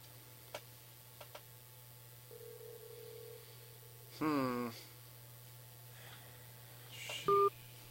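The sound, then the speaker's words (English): Over a steady low hum come a few soft clicks and a faint held tone, then near the end a short, clear keypad dialing beep rings out as someone dials a call on a phone. “Maybe I'll just call on my phone.”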